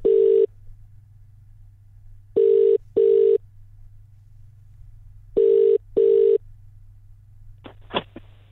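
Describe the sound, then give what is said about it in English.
A telephone ringing tone heard down the line as a phone call is made, a steady low buzz repeating in double bursts with pauses between, over faint line hum, ending in a few sharp clicks as the call connects. “I've got a phone call to make in just a second.”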